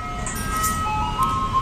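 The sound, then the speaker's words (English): An ice cream truck's jingle plays the tune Turkey in the Straw, originally titled Old Zip Coon, as a thin, high chiming melody note by note over a steady low engine rumble, with no one speaking. “Guys, the original name of this song was Old Zip Coon.”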